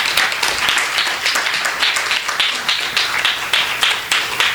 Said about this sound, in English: I'll let Terry introduce each of the poets, but I just want to say welcome to all of the poets and to all of you, and please join me in a round of applause for Terry Wolverton.